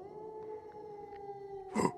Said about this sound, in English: And as you guys are spending time talking and discussing the letter, you hear the cry of a lone wolf.